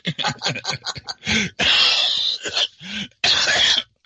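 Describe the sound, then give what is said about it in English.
A loud coughing fit: a rapid string of short hacking coughs, then several long, harsh, wheezing coughs with brief gasping breaths between them, with no talking. “Oh my god, the cough.”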